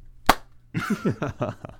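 After a 3, 2, 1 countdown, a single sharp hand clap for syncing a recording cracks out on its own, then a pause before someone starts talking.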